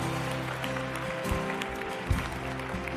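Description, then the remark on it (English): A large audience claps together as a clap offering of praise, in sustained, dense applause that holds steady for the whole stretch, a thick wash of many overlapping hand claps. “Come on, put your hands together and give them a clap offering of praise.”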